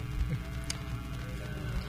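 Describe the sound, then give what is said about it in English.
Someone hums the Force theme in a low, steady voice, the tune held in sustained notes for a couple of seconds with no words spoken, alongside a trailer voiceover. “I feel like I need somebody to hum the Force theme.”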